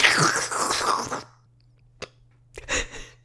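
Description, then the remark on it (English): A voice imitates a loud, wet slurping sound of someone slurping up licorice for over a second, followed by a brief pause, a small mouth click, and a shorter second slurp. “I need you to foley for him slurping up another ranch of licorice.”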